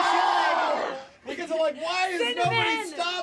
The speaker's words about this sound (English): We would all be screaming like that. It wasn't happy screams of joy, was it? No. Terrified. It was terror. The kids were immediately horrified and began screaming, running, and crying.